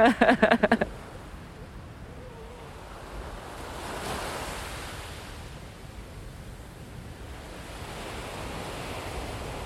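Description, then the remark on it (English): Steady roar of surf breaking near shore in front of a tower and by a rock wall, a broad wash of noise that swells around the middle, preceded by a brief burst of rapid clicks at the start. “Looks like it's breaking in front of the tower here and over by the rock wall.”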